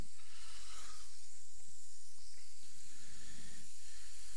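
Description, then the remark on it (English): A smash burger patty sizzles on a hot surface as it is pressed flat with a smasher: a steady, bright, crackling hiss that runs the whole time over a low hum, with no one talking. “And what you're going to do is you're going to take the smasher and you're going to press it down.”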